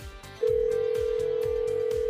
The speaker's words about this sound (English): Natalie's dialing her up